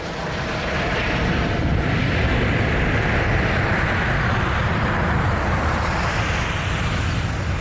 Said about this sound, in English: And just for comparison, I've got for you a recording of an airplane taking off. This is posted on YouTube by PDX Aviation, because they are not dissimilar noises.